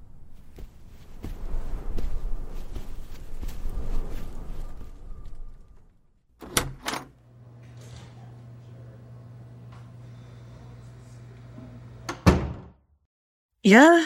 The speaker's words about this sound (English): That's a door to the break room, all right.